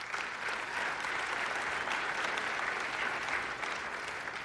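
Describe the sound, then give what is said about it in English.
A crowd applauds steadily, a dense wash of many hands clapping at an even, sustained level throughout, with no voices standing out. “I'm reading the clapping as I'm signing up.”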